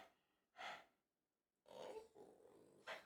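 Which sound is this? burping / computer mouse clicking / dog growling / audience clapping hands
dog growling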